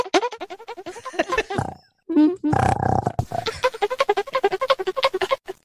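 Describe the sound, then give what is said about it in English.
A man imitates the gorilla roar from the arcade game Donkey Kong with a growling, gravelly burst of voice about two seconds long, set between rapid, energetic speech before and after. “I enjoyed Donkey Kong. You know why? Because I had to learn how to make that noise.”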